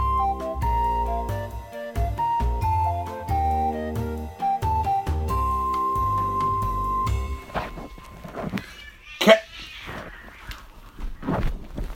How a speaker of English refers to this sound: Cat, stop fighting! I'm recording a podcast! Sorry, guys. My cats are being turds.